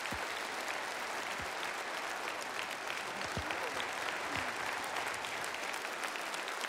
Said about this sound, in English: Let's just give him a warm round of applause as he comes up.